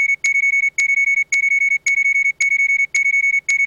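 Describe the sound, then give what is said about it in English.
A steady electronic alarm beeps continuously from the speakers of a suit as oxygen runs dangerously low, a loud high-pitched tone broken by short regular gaps about every half second, with no voices present. “A persistent beeping had started from the speakers of my suit.”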